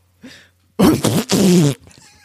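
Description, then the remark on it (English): A person voices a yoga balance ball bursting: a short intake of breath, then a loud, spluttering blast of about a second that breaks briefly in the middle before trailing off. “Make the sound of a yoga balance ball.”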